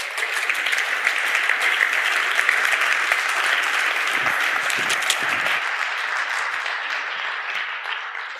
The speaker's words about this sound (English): Please give her a round of applause, folks.